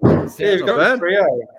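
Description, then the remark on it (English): A single loud door slam with a heavy low thud as someone walks in the door, immediately followed by a person talking. “And Brad has just walked in the door, so we'll get him involved as well.”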